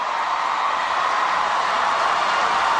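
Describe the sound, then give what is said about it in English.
Recorded applause plays for a few seconds: a dense, steady wash of clapping hands, loud and even throughout, with no voices over it. “Sean, play a few seconds of canned applause.”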